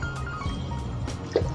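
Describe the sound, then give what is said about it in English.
Quiet liquid sounds of water being sipped or poured: a few soft wet slurps and drips with a brief gulp near the end, no talking. “This episode is sponsored by water.”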